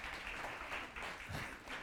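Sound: audience applauding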